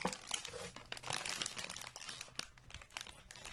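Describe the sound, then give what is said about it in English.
A crinkly plastic potato chip bag is handled and squeezed, producing dense, bright crackling with sharp snaps scattered throughout, steady and continuous for a few seconds with no talking. “There's a box. Oh, there's a bag of potato chips.”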